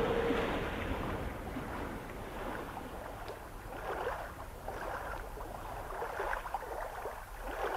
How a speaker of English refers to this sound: This storm, the waves are beating into the boat and the boat is filling, and of that we are afraid.